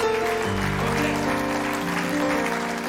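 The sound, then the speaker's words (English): An audience claps hands to God in a steady, dense wash of applause, sustained over held keyboard chords that shift beneath it for the full length. “Come on, let's clap our hands to God if we believe that.”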